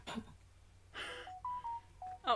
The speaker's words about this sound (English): Sorry. My music. Notification's really loud.